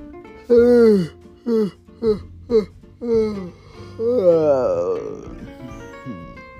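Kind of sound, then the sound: human body sound, person yawning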